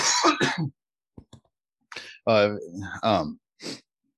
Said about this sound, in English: usually if I'm gonna die coughing, a dab's gonna do it. And I'm not sure if I'm burning my lungs or what, but I'm probably doing something wrong. I have no idea what makes you cough, because I cough a lot off of dabs and not so much off flower.